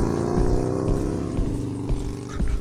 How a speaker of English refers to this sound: There goes a car. There goes another car. Is that a lorry? There goes that's a motorbike.